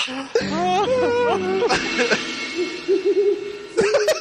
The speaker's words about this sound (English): The owls.